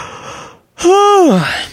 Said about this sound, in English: And I'm going to yawn at you while I say that.